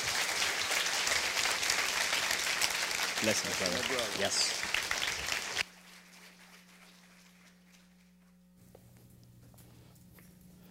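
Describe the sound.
A Metro church audience gives a warm welcome to a guest reverend who speaks on incarceration. A loud, dense wash of applause fills the first half, with a few voices calling out over it, then cuts off abruptly to a quiet hum with faint speech.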